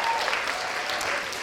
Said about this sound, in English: Should we give her a clap? Because it's quite a big thing.